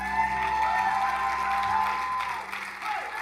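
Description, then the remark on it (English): An audience stands and claps steadily for Jesus for a few seconds, a dense, sustained wash of hand clapping with a few scattered voices and a faint tonal hum underneath. “Come on, stand up all across this place and give a better hand clap to Jesus.”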